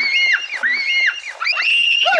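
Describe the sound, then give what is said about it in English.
Two high-pitched voices of twins in a film clip scream and shriek together in overlapping, wavering cries, loud and continuous with brief dips, sounding frightened. “All right, here's those twins being all scared.”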